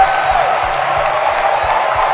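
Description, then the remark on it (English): A large crowd fills the space with sustained applause and cheering to thank God, a dense, loud wash of clapping and raised voices with no individual speech standing out. “Thank God with a hand clap.”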